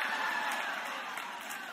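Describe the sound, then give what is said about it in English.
An audience claps steadily in response to a remark about a neighbor putting up Christmas lights in early November, a dense patter of many hands blending into a continuous hiss that stays even throughout, with no voices standing out. “Pray for all the dysfunctional people who are clapping for that, like that's normal.”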